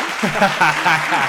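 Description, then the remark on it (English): A burst of canned applause sound effect from a new feature of Riverside, steady crackling clapping that holds at an even level for just over a second, with cheering voices rising and falling on top of it. “Just had to add the cheesy clapping.”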